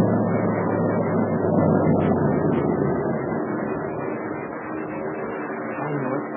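A steady, low droning of invader airplane engines overhead in the dark night above the Burma Road during a war, continuous and fairly loud throughout, with a dense rumbling hum that barely shifts in level.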